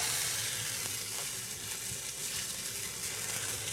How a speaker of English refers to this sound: I love carbon steel pans. They are my favorite for any kind of searing. And honestly, it gets the most work out of just about anything that I own.